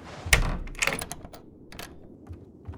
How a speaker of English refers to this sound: Hold on, the front door is just blown open.